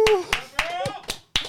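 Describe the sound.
A handful of sharp, irregular hand claps, about five or six over a second and a half, with a voice whooping and cheering underneath.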